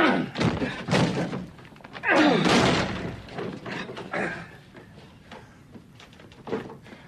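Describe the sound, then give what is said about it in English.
A locked door is forced open with several heavy thuds, one louder splintering crash midway, then quieter knocks and rattles as it gives way. “Get the door open. Get it open, quickly.”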